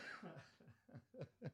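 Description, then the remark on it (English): A run of five or six short coughs in quick rhythmic succession, partly voiced and laugh-like, with the last two sharper and louder. No talking. “You're just coughing.”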